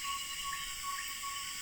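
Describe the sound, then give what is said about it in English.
At dusk in the rainforest of the Yasuni National Park region, northeastern Ecuador, a dense, unbroken chorus of insects and frogs calls, shrill buzzing and trilling layered together at a steady level, filling the air all around with no voices. “It is dusk. Insects and frogs call all around, and a ferruginous pygmy owl gives steady toots from its perch in a nearby tree.”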